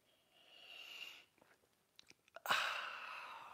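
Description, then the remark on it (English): A soft slurping sip of coffee, followed by a few small clicks and a breathy, satisfied exhale, all quiet with no talking. “Join me now for the simultaneous sip.”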